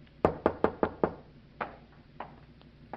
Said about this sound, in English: I went upstairs, opened a bottle, and waited for your knock on my door, Commodore.